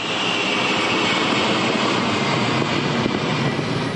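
A loud, steady roar of a cargo plane's engines in flight, a commercial cargo plane chartered by the World Food Programme and rigged for dropping food; a dense unbroken drone filling the space as if heard from inside the aircraft, with no voices.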